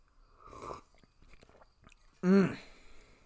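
A soft slurping sip of hot Arbor Day blend coffee from a Yeti stainless steel mug, then quiet mouth clicks and swallowing, and finally a loud, satisfied voiced sigh after the drink.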